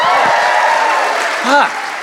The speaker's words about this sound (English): Can we just give a quick round of applause to everyone you've heard so far tonight?